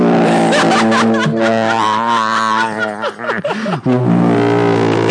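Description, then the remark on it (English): A voice imitates the deep, booming cinematic horn blast heard through much of a long movie: one loud, sustained low drone held for about five seconds, wavering and breaking briefly near the end before resuming, with a hint of laughter. “It actually sounded like the sound effect from Inception.”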